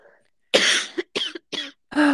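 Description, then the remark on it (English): A loud cough fit: four harsh, raspy bursts in quick succession with short pauses between them, the last one slightly longer and throatier. “I got a cough real quick.”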